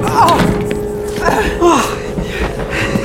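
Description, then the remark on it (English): A carriage door thuds shut with a dull bang, with a few more knocks and bumps around it, while voices shout and gasp in a tense scramble. “Shut the door!”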